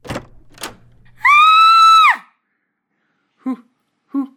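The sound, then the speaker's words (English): A door opens with a couple of quick clunks, then a loud, steady creaking squeal for almost a second, followed by two short vocal sounds. “Now, open the door.”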